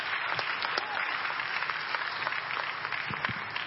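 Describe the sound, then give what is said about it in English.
A church audience gives the pastor and God another round of applause, a dense wash of many hands clapping at once, sustained and fairly loud throughout with no pauses and no voices standing out. “I'm sure we can give Pastor and God another round of applause.”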